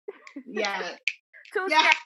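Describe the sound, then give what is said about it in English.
A single sharp finger snap cracks out in a brief pause between two stretches of voice, short and crisp against the longer vocal sounds around it. “I got all the finger snaps.”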